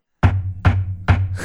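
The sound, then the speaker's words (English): Steady, evenly spaced knocks on a locked door, three firm thuds with a fourth beginning, each with a deep wooden resonance. Loud, no voices. “Oh, good. The space cops are here. Well, maybe. Damn, the door's locked again.”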